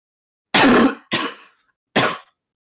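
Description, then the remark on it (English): Three harsh coughs in quick succession, the first loudest and longest, the next two shorter and a little weaker, with silence between them and no talking. “No, don't worry, I'm not gonna die coughing in the beginning.”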